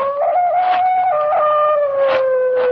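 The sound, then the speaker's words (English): At night, a dog's long, wavering cry carries from across a lake, a sustained mournful howl that slowly shifts in pitch and keeps going without pause, with no voices around it. “From somewhere across the lake, I heard the cry of a dog, and the sound of it filtered through and was carried along by the night air.”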